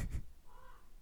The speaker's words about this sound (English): Can you hear the raven?